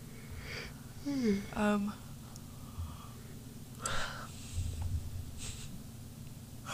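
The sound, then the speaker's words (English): A person lets out a drawn-out yawn, a breathy voiced groan sliding downward in pitch, followed by a few soft exhales and rustling breaths. “Sorry, I had to get that yawn out.”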